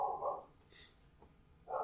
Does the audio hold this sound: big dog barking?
yes